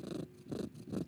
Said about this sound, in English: Oh, listen to that purr.